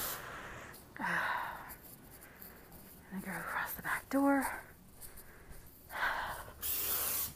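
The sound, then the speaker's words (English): Short hissing bursts of liquid from a spray bottle, sprayed underneath things, repeated several times at irregular intervals while a person speaks quietly between the sprays. “My mom like was telling me, spray here, spray here.”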